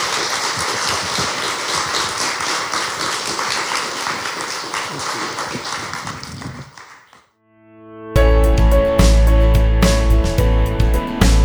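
A crowd at Oasis Church Bath claps steadily in a dense, even wash for about seven seconds before fading out. After a brief silence, loud music with sustained tones begins.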